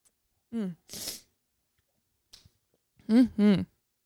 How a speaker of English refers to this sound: You guys hear that sniffle? Fuck. There's nothing that pisses you off more than that sniffle. You're like, God damn it. Tis the season.